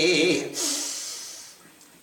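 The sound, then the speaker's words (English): A brief vocal sound trails off into a deep, airy breath, a soft rush of air that slowly fades, as a person breathes in and exhales a mantra during pranayama breathing practice. “I'm breathing in a mantra and I'm exhaling a mantra, and therefore I've got pranayam.”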